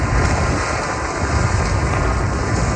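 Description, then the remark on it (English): A rock slide of rocks and boulders tumbling down a hillside onto Malibu Canyon Road, just south of Payuma Road in the Santa Monica Mountains: a steady, heavy rumbling roar with boulders grinding and tumbling, thick low-end energy and gritty crackle over it, continuing without a break and with no voices. “You're wondering what that is. It's a rock slide.”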